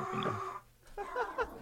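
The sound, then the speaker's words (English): A dog grunts and makes soft, whiny vocal noises as it is picked up, in two short bursts separated by a brief pause, fairly quiet overall with no talking. “Sorry, I had to grab my dog because he wants to be a part of this now, apparently.”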